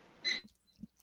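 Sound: timer going off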